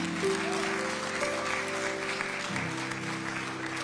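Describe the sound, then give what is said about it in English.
A church audience claps steadily after a baby is blessed, a dense wash of many hands applauding at an even level, with a murmur of voices and a low sustained tone underneath throughout. “Give him a hand clap.”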